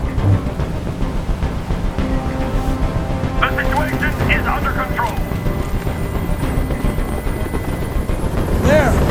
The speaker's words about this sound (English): I can't stand that noise anymore. Tell that helicopter to get out of here.